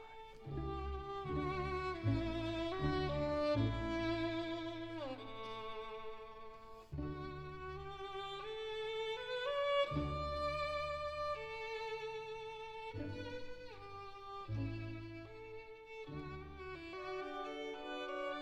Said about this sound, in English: The Violin Concerto in D Major, Opera 61, Allegro, Ma Non Troppo. the excellent music in the public domain.